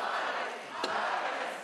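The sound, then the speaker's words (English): A dense, roaring crowd at Munich's Oktoberfest rushes through the gates toward the massive beer tent, with continuous excited shouting and cheering, loud, and one sharp burst cutting through midway. “Excited crowds rushed through the gates of the world-famous beer festival, many of them running towards the massive beer tent.”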